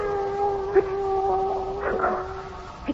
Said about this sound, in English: But, uncle, a cat. A cat. The soul of Thur. Osiris has sent the soul of Thur and turned it into a cat.